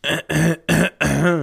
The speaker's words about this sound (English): And if you enjoy ASMR stuff, I will be clearing my throat like Gary Delabate of the Howard Stern Show.